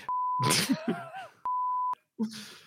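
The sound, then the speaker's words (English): A person vocally imitates a censor bleep: two flat, steady bleeps, each about half a second long, bracket a burst of loud, strained vocal noise, followed by a short murmur of voice afterward. “Are you beeping yourself”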